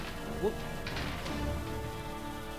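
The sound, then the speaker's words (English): A door being busted open: a short rising creak, then a couple of loud splintering crashes and thuds that trail off into a low rumble. “All right, so you bust open this door.”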